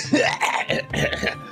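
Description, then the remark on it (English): A raspy spluttering cough in a few rough bursts, throaty and wet-sounding, with strained breaths caught between them and no words spoken, as a gust of wind forces air down the throat. “and a gust of wind forces air down your throat, causing you to sort of splutter and cough as you go and drop down to the ground on the top of the saddle, sort of like coughing a bit as you're like trying to like get your breath back.”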